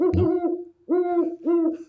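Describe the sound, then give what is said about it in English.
An owl hoots three times: one long, wavering call followed by two shorter, evenly spaced hoots, each loud and clear with no other sounds around them. “So this owl flew in saying, "I got to get some of that."”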